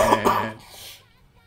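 A short, harsh coughing fit: two rough, wet-sounding coughs in quick succession, then a fading raspy breath. No talking.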